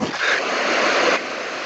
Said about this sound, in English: What? What's going on? Sounded like a waterfall. Waterfall?